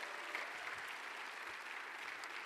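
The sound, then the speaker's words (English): An audience applauds steadily for its young adults going off to college, a dense wash of many hands clapping at once that holds an even, sustained level from start to finish with no voices breaking through. “Now, we prayed a lot, we've clapped a lot, we've had a lot of stuff going on, I realize.”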